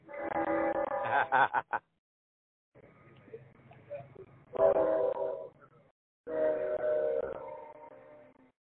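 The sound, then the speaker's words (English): A train rumbles past in the background with loud, harmonic horn-like blasts that come in several long bursts separated by brief gaps. “Well, let me get the train get out the background.”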